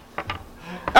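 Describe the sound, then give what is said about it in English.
A few quick clattering knocks of dice tumbling onto a table for a perception roll, with a short pause between the first pair and a final sharper rattle as they settle. “Roll a perception.”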